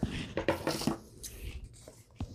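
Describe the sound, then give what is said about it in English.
Scissors cutting a piece of upholstery fabric to about the right length: a quick run of crisp, scratchy snips, then a pause and a couple of softer, fainter cuts. No one speaks. “And I just cut a piece that was going to be about the right length here. Just get my scissors.”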